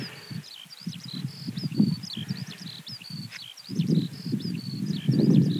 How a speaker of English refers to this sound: Here we go, skylarks.